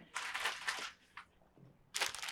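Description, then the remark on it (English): A bag of Doritos chips crinkles in two loud bursts of crackly rustling, separated by a short lull with a quick single crinkle in the middle. No voices are heard. “Yeah, pass me those Doritos.”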